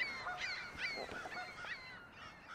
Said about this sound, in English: And then there's a goose over here, just honking by himself.